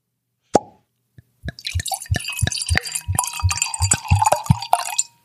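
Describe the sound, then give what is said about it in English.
Wine glugs from a bottle into a glass in a heavy pour, a rapid run of wet plopping gulps over a bright liquid splash, fairly loud, after a sharp initial clink. “I'm a heavy pour.”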